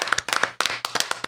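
A brief burst of audience applause, many hands clapping together in a dense, uneven patter at moderate volume, with no voices over it.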